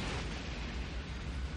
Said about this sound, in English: We're caught in a fireworks display! Nobody told me it was the Peruvian holiday.